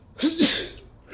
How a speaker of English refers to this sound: Bless you.